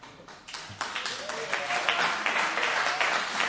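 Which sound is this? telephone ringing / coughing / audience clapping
audience clapping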